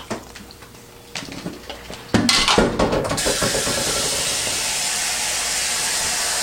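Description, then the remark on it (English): A few light clinks and knocks, then a steady, loud rush of filtered water pouring into a cup holding a powder packet's contents, filled up to the fill line before microwaving, continuing without a break to the end. “And I'm going to pour some nice filtered water in here up to the line.”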